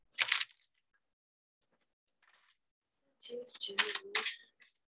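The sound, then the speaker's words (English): Shuffling of a tarot card deck during an Aquarius reading: a brief crisp burst, a quiet pause, then a longer run of papery riffling and slapping, with a faint murmur of voice underneath. “I jinxed myself by saying this deck was easy to shuffle because now I'm having issues.”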